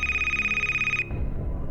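A telephone rings with a bright, steady electronic trill that lasts about a second, then cuts off abruptly, leaving a low, muffled rumble behind.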